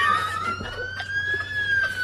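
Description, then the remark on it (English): A police car siren wails in a long, slowly rising tone, loud, over a low engine-like rumble, with no talking. “Let me turn on the siren.”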